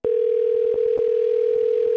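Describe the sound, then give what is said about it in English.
A telephone line tone sounds as a call goes through to the county recorder's office of Cook County, Minnesota: one steady mid-pitched hum, unbroken and fairly loud for about two seconds, with no voices. “I called her up to get a local's perspective.”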